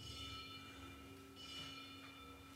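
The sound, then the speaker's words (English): A ritual bell rings with a sustained, shimmering tone over soft low drum beats in an instrumental solo of a Buddhist song of the three refuges, fairly quiet and unhurried, with no voices. “You had drum, bell, bell, bell, bell, bell, bell, drum, quiet drum, bit loud drum, bell, and a different bell.”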